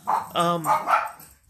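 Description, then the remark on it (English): Dogs barking: a quick run of about four loud, sharp barks, one right after another, filling the short stretch of sound. “I'm about to cut a promo on some dogs pretty quick.”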